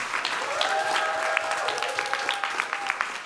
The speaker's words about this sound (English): Hallelujah! Hallelujah. Please clap for the princes.